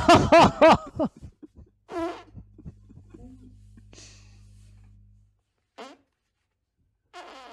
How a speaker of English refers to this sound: Do you want to see me fart in these?